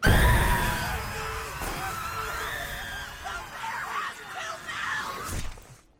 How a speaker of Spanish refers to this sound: Well, it doesn't sound awesome. Y se escucha un audio de gritos y ruidos horribles, y alguien que grita, el oso tiene dos bocas.